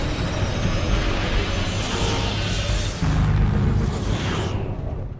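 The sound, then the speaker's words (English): A spaceship rumbles heavily through an FTL (faster-than-light) jump, a dense, steady roar with deep low-end weight and creaking strain, swelling slightly partway through and holding loud throughout, with no voices. “And you hear all the creaking in the background.”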